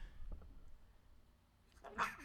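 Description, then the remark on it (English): A single sharp sneeze bursts out near the end, a quick breathy explosion after a couple of seconds of low, quiet background. “Nobody said God bless you, though, or Gesundheit.”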